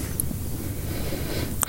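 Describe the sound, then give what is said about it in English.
A drawn-out nasal sniff at a freshly opened beer, a breathy rushing inhale held for a second or two, ending in a brief sharp click. No one speaks. “Do we sniff there?”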